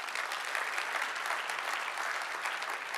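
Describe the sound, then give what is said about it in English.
A crowd claps for God, steadily, in a dense wash of applause that holds at an even, fairly loud level throughout, with no voices rising above it. “Yeah, you can clap for God.”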